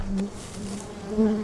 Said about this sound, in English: I love watching bees fly around and do their little bee business.